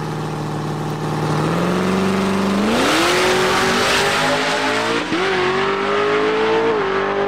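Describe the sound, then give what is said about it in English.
A loud Camaro drag racing car engine roars at full throttle during an 8.2-second drag run, its pitch climbing steadily through several gear shifts with brief dips between them, continuous with no talking. “I'll show you the run. Headphone users, beware, it is loud because Camaro stuff.”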